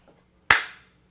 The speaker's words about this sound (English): Where's my butt slap?